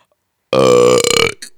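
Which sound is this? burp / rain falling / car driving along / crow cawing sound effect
burp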